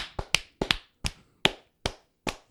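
About eight sharp hand claps, close and fairly loud, in an uneven rhythm: a few quick pairs early on, then single claps spaced further apart, with no talking.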